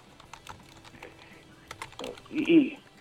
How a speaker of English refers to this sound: My son's here. Oh. He's typing in some stuff on the computer.